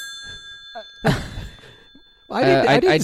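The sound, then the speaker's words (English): A hotline phone rings with a steady, high, bell-like electronic tone, then a sudden loud clatter breaks in. A voice follows at the end. “We don't use that hotline phone number. It was just in case. Well, pick it up.”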